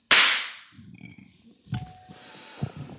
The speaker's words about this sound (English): All right, silence on the set. Quiet on set. Want to lean forward so you get all the cameras on the clap?